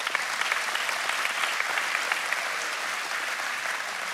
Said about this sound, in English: That's worth a hand clap. Come on, give it up.